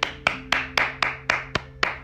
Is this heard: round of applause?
yes